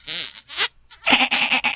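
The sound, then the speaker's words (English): A voice imitates a goat-like bleat, a short wavering cry followed by a louder, strained and buzzy bleat, close and unaccompanied by any other talk. “You went for the llama. It's kind of a goat.”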